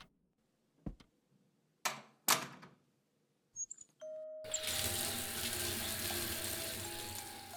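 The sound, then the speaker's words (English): A few sharp clicks and knocks as a sticking bathroom tap is worked, then hot water gushes out in a steady, loud rush that fills the remaining seconds as a bath is filled. No one speaks. “Colette ran herself a bath while Mandel read the paper and enjoyed his customary post-workday cigarette.”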